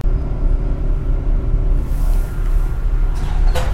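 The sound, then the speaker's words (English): Steady, heavy low rumble of a moving New York train on a Thursday night heading into the city, heard from inside the car, with a brief hissing, screechy burst of sliding doors near the end. No voices. “Not many people on the train.”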